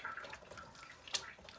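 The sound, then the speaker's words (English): Water swirls and sloshes softly as it's stirred in a cooking pot after a third can of water was added, a quiet, continuous watery churn with one brief sharper splash or clink partway through. “Let's give it another stir.”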